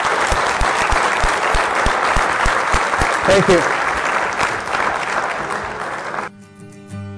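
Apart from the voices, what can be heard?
audience applause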